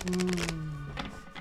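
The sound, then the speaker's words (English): A quick burst of papery shuffling of a deck of oracle cards, a rapid riffle of flicks lasting about half a second, over a low steady hum, followed by softer rustles. “I'm going to shuffle the cards from the Mystical Shaman Oracle deck”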